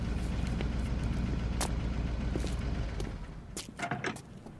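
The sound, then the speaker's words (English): A blue truck's engine rumbles and sputters unevenly in the distance as it arrives, then dies down near the end, followed by a few short clanks. No one speaks. “I just had about it figured out as the blue truck sputtered in the distance.”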